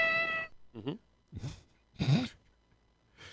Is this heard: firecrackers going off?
no